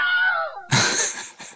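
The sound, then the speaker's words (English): The Wilhelm scream stock sound effect, used in at least 400 films and TV series and named after Private Wilhelm, a character in the 1953 Western The Charge at Feather River: a brief strained cry that breaks into a loud, harsh yell and trails off with a short final gasp, heard alone. “Okay, so from the Wikipedia notes here, the Wilhelm Scream is a stock sound effect that has been used in at least 400 films and TV series.”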